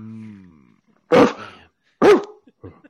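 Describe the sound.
A person mimics a dog with two loud barks about a second apart, barking whenever another speaker tries to talk, followed by a few faint, short vocal sputters. A soft low hum fades out just before the first bark.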